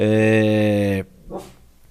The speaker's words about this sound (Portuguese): e minha cachorra está aqui perturbando.